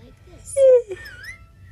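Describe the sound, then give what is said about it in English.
Someone gives a brief, loud whistled note that slides slightly downward, followed by a few fainter, wavering whistle tones over a low background rumble. “Like she can whistle? That's impressive.”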